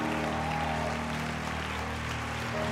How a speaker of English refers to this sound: Come on. Keep clapping. There's more. Come on.